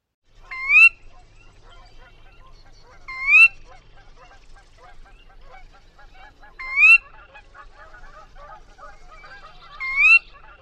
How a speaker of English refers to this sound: This is the sound that gave rise to the sora name, sora. I think this sound is a little creepy and a bit eerie.